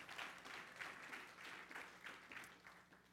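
A church audience applauds steadily for Jesus, a dense wash of many hands clapping at once with small swells, sustained for a few seconds at moderate volume.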